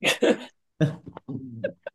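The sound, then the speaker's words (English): A dog whimpers and grumbles while its owner tells it off, in a few short, uneven bursts, with brief whiny squeaks at the end and short pauses between the sounds. “I think he's telling off his dog.”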